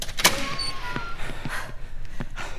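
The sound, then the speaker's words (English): A door slides open with a sharp scraping rush, followed by a few scattered mechanical clicks and rattles as it moves along its track, with no voices. “Door's open.”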